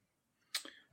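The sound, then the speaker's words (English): A short, crisp rustle of paper being handled: one sharp crinkle followed by a couple of softer shuffles, quiet, with no one talking. “I hear a piece of paper.”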